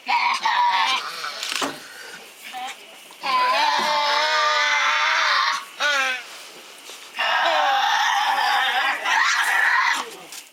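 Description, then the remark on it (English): Tasmanian devil screeching: loud, raspy, strained screams in several bursts, a few short cries followed by two long, sustained wails, with no talking. “Is the, I guess, the sound of the actual animal. Tasmanian Devil? Tasmanian Devil!”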